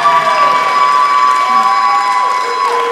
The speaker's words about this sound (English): Friends, let's first clap again